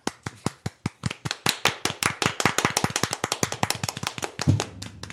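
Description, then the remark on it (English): A burst of applause from a small group, sharp claps starting sparse and quickly building into a dense, overlapping patter before tapering off near the end. No talking. “People clapped. It was nice.”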